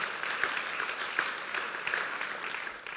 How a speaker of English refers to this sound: And that is thanks to you and to your generosity. So bless you. Let's give the Lord a round of applause for that.